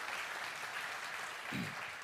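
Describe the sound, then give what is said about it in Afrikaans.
A church audience claps together in steady, sustained applause to welcome the online audience, many hands blending into a continuous wash of sound, with no speech over it. “Kan ek vra kerkfamilie met 'n hande klap kom ons verwelkom ook net ons aanlyn gehoor.”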